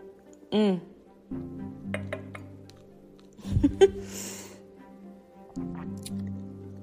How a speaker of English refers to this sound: And as we go along, and then when I did take the first taste, and I'll sip it here for you one more time.